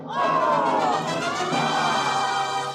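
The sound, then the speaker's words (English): A large baseball crowd erupts in a loud, sustained roar of cheering and yelling for Casey as he advances to the bat, many voices blending into a dense wall of sound that stays steady for a few seconds. “Then from Casey, the gladdened multitude Casey, went up a joyous yell.”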